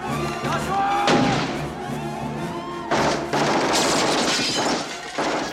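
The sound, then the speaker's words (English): Loud bursts of automatic gunfire crackle through a chaotic scene, with crashing, shattering impacts mixed in and a few harsh volleys that rise and fall over several seconds. “Oh yeah, automatic gunfire.”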